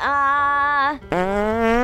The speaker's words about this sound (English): I farted. Because I'm nervous.